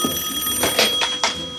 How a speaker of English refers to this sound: Here's the big phone call.